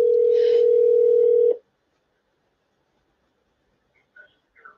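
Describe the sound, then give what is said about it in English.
A steady, loud telephone dial tone hums for about a second and a half as a caller is put through on the phone, then cuts off into silence broken only by a few faint, brief electronic blips near the end. “Okay, yes, let's get Liani on the phone here.”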